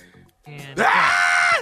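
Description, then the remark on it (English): A man's voice, acting out someone running from a big dog and about to get bitten, lets out a short, strained groan, then bursts into a loud, sustained scream that rises and wavers before cutting off. “Yeah, what it sound like when you running from a big dog about to get bitten?”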